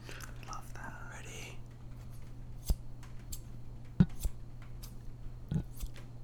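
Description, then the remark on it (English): Crisp snips of gold-plated, right-handed scissors with an orange handle cutting through empty air, not cutting paper, three spaced-out clicks after a brief stretch of soft whispering, with a faint steady hum underneath. “Actually cutting the paper, I'm just making the scissor noise.”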